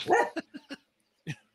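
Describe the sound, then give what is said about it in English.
A dog barks: one longer, rough bark followed by three quick, short yaps, a brief pause, then a final single bark. No voices. “Oh, someone's saying hi. Yeah, he's hey. Say, what's up, dog?”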